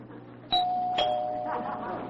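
A doorbell rings with two bright chime strikes about half a second apart, the tones ringing on and slowly fading over a low background murmur.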